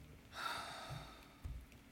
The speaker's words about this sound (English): Wow, that's a lot of heavy breathing. that was a sigh of defeat.